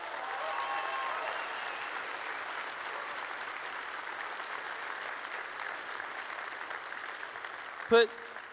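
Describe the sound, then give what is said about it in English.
A large audience claps and cheers steadily for several seconds for Holly, who is watching online, a dense, even wash of applause with mixed shouts, ending with a brief sharp burst near the close. “Hey, Holly, I know you're watching online, so I'm going to have the audience just cheer to let you know we love you. Can you guys just cheer for her?”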